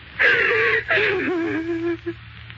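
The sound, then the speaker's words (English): A woman, flopped down on a shabby little couch, sobs in two long, wailing bursts, her voice strained and breathy, the second cry sliding downward in pitch before trailing off into a short whimper. “There was clearly nothing to do but flop down on the shabby little couch and howl.”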